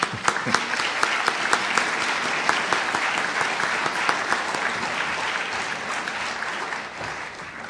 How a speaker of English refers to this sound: First of all, let me thank all those folks again with an applause, and please help me.